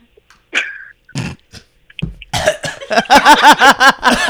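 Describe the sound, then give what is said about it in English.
A few short, sharp snorting coughs forced through the nose, fairly loud, then a run of rapid, rhythmic laughter bursts. “I almost started my coughing through my nose when you laughed.”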